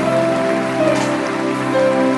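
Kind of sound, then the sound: crowd, audience applauding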